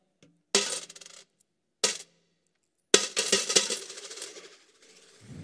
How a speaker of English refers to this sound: The sound of the coffer. The sound of the coffer. And perhaps after people dropped their coins in the coffer, you'd hear someone say this sentence